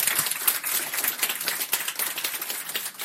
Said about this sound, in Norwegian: Veldig fint, det betyr en applaus.